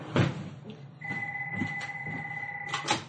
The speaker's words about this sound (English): let me answer the phone. Sure. It's important that the damn phone rings every episode of every frickin' fracking show.